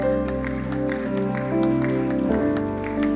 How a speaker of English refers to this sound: Hey, church, why don't we give that person that responded a huge round of applause? Awesome decision to make.